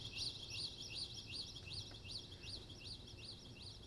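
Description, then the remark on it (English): Birds chirp steadily outdoors along a fenced visitor pathway through lush green forest, a rapid series of repeated high, arching calls over a low background rumble, continuing throughout without any talking. “There are even birds.”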